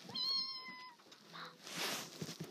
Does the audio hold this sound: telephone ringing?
no